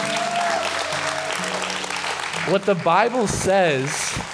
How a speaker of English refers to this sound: I do want to let you know that we had some people in this room give their life to Jesus tonight. So can we give God a hand clap of praise for that?